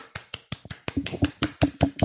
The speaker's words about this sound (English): Good job, though. You get the claps.